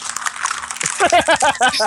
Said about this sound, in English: Oh, okay, I see it now. Oh, man. You crumpled the script up and threw it away. Way to go.